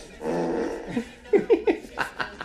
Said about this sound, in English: Nasty dog. What are you eating?